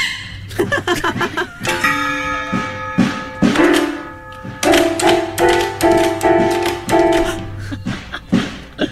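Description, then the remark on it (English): Lizzie the dog's wagging tail knocks against a drum in quick, irregular taps and soft thuds, scattered among sustained, ringing tonal notes, with no talking. “But the tail wagging is hitting the drum.”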